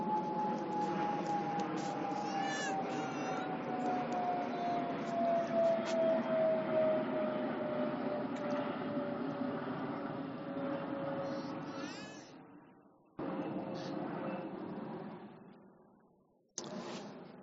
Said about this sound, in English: Let me pause for the plane.